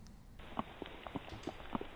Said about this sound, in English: That's a horse walking on asphalt.